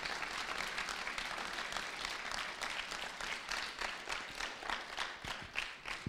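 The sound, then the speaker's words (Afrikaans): An audience claps steadily together in praise to God. A dense patter of many hands with a loose rhythmic pulse is sustained and fairly loud for several seconds, with no voices standing out. “Kom ons klap vir die Here, kom.”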